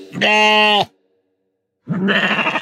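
Two loud bleats from a goat: a long, steady wavering cry, a second of silence, then a harsher, rougher bleat cut off at the end.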